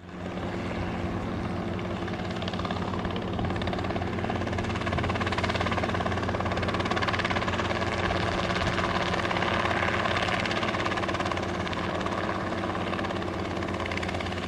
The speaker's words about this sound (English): That, of course, was a helicopter.